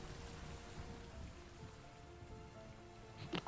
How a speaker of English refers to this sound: Noise of rain kind of fades as you leave the open air area hallway and head down.